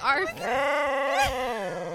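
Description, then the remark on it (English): A male dog whines in a long, drawn-out, wavering cry with a rising yelp near the end, fairly loud, heard alone without talking. “It's a dog, not a child. And he's mad at us right now.”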